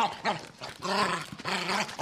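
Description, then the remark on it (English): A robotic sci-fi dog growls and snarls in a few loud, rough bursts, with whiny rising tones between them and no one talking. “I got a clip of Daggett”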